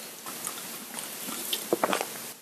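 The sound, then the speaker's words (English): Someone takes a quiet sip of a Rockstar energy drink, with soft wet slurping and a few brief gulping sounds over faint background hiss, and no talking. “Let me take a sip of Rockstar.”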